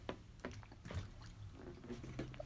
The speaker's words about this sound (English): I hope you guys are drinking your water today, because I am.